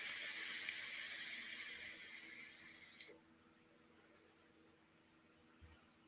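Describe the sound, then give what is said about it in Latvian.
A steady sizzling hiss of a dripping atomizer vape coil firing during a draw lasts about three seconds, then cuts off with a small click, leaving quiet room tone and a faint tap. “Wow, tagad es jūtu, tas tvaiks palikt tāds sausāks uz beigām.”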